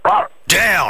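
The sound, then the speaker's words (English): A man does a dog impression on Triple M radio with two quick, loud vocal barks separated by a brief pause, the second harsher and slightly longer than the first. “purveyor of dodgy dog impressions.”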